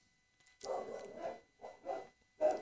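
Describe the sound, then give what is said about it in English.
Several dogs bark and yelp in the background, overlapping bursts of barking coming in quick succession, muffled and fairly quiet, with no one talking. “And I hope the great dog chorus in the background is not bothering you too much.”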